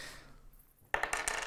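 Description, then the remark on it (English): Dice clatter across a hard surface in a quick burst of bright, sharp clicks and rattles after a moment of quiet, bouncing several times before settling, rolled as a Christmas cheer roll. “Okay, so give me a Christmas cheer roll.”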